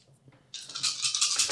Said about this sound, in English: Those artifact dice, I've had about six or seven successes off them. They've been rolling very well.